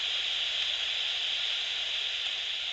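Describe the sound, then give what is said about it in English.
Steady, unbroken electronic static hiss, bright and loud, from handheld bat detector devices held by a group of about 50 people and turned up to full volume, holding constant with no pauses or voices for a few seconds. “They were blasting out static at full volume, and everyone was staring up at the sky.”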